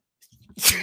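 A single loud sneeze: a brief, soft intake of breath builds up, then a sharp, hissy burst explodes out and fades quickly.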